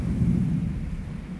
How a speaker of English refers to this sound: And then you can also hear this faint echo. And that faint echo is the glacier slowly melting. It's not a drip, drip, drip, but it's an echo as if there's some sort of movement taking place.